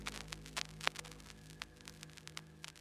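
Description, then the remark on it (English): Static from the speakers of a still-spinning record player in an apartment crackles steadily over a low electrical hum, with irregular sharp pops and clicks scattered throughout, fairly quiet, with no voices or music. “Anna's record player was still spinning, with just static coming out of the speakers”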